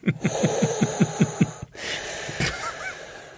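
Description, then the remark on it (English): A person imitates a firefighter's breathing apparatus with a quick run of about eight rhythmic, rasping breaths, then a longer airy hiss, moderately loud, with no talking. “your breathing apparatus doesn't seem to be working because you're unable to come up with more than three words before you have to have a deep breath.”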